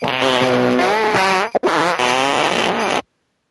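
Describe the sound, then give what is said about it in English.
A loud, drawn-out fart sound effect: two long, wavering, buzzy blasts separated by a brief break, prominent, with no talking. “That email, what was it called? It was called Epic Fart.”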